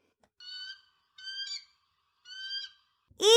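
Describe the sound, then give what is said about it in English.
An eagle screeches three times in a steady rhythm, each call a high, thin, harmonic shriek, followed by a sudden louder, harsher cry at the end. No one speaks. “The screeching sound of their enemy.”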